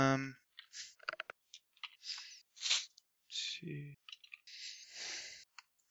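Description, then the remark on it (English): Dice clatter and rattle across a hard surface during a tabletop game, in a series of quick bursts and scattered clicks, with a couple of brief vocal sounds in between. “Dice everywhere.”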